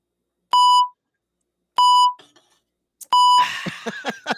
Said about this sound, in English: Beep goes Hannah's phone.